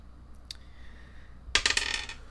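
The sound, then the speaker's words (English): A single faint click, then a quick burst of hard, rattling clatter as dice tumble and bounce across a surface before settling, fairly loud, with no one talking. “And we're going to roll some COVID, or not COVID dice, the good dice.”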